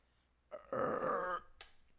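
One long, loud belch rumbles for about a second, close and strained, followed by a brief breathy exhale. No one speaks.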